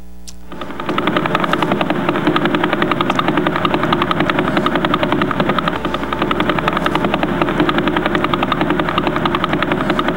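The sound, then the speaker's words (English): A pulsar's radio signal turned into sound: a loud, rapid, steady thumping pulse, about eleven beats a second, with a harsh buzzing texture. It starts abruptly and continues unchanged with no voices. “That's called the pulsar.”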